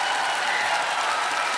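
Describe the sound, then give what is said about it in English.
Steady, dense clapping from many hands in a standing ovation blends into a continuous crackling wash of applause, loud and unbroken with no individual claps standing out and no voices. “Who even invented clapping?”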